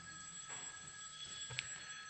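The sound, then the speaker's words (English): A faint electronic phone ringtone, a steady high-pitched warbling tone that runs continuously through the brief clip, with a soft click near the end and no talking. “Just hoping that's not my phone.”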